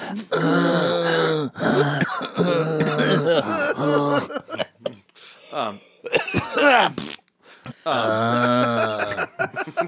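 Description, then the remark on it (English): A voice imitates the heavy, labored breathing of a killer dragging a bloody bag into a swanky-looking place, straining with loud voiced groans and grunts in several long bursts separated by short gasps. “Let me cut to the killer dragging a bloody bag into a swanky looking place, breathing heavy. Get some breathing in there,”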